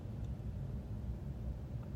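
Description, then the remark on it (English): Steady outdoor ambience of a parking lot heard from inside a car with the windows down: a constant low rumble with a faint hiss, like traffic drifting through the open windows, with no voices or distinct events. “Like, I'm just sitting in my car with my windows down in a parking lot.”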